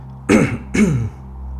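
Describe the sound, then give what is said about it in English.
A man kneeling on all fours on the ground gives two harsh, throaty coughs in quick succession, fairly loud, with no talking around them and a quiet pause after. “The man brought his knees up so that he was kneeling on all fours instead of prone on the ground, and coughed several times.”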